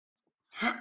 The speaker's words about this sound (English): That was a I thought you gasped. Hiccup is all that was. No, it was an agave hiccup.